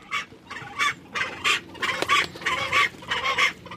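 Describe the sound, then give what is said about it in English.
A Fiordland crested penguin (tawaki), deep inside a rock burrow under large rocks in forest at Milford Sound in 2017, calls a run of about seven harsh, braying bursts in a steady pulsing rhythm, moderately loud with no voices present. “So there's a penguin in there, but it's way back, huh?”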